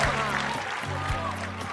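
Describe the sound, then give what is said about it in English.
A crowd at an ugliest dog competition applauds and cheers in a steady, dense wash of clapping that continues without a break, with a low tonal hum running underneath. “The crowd's reaction was a lot better than I thought it was actually going to be.”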